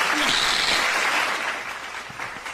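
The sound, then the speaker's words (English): A hand clap sound effect: a dense, steady wash of many claps that sounds like applause, holding at an even loudness for a couple of seconds with no voices. “Hand clap.”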